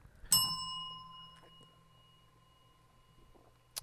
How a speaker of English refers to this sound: Hit the bell, please.